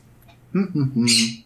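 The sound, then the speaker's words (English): A female pet bird, locked up after someone left the room, lets out a few quick harmonic calls that build into a loud, harsh squawk lasting under a second, with quiet room tone before it. “I'm just going to sit here and listen to some chirping for a minute”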